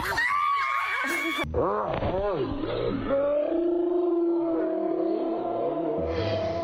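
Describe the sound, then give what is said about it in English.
A feisty dog growls and barks loudly in a rapid, rising-and-falling string of rough yelps and snarls, with a person's voice talking alongside it. “That's one feisty dog.”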